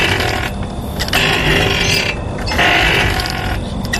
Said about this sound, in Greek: Δεν είναι πόρτα αυτό. Είναι κάτι το οποίο το κάνουμε μικρή, το κάνουμε μεγάλη. Κούνια. Δεν το κάνουμε σπίτι μας, το κάνουμε κάπου έξω. Κούνιες.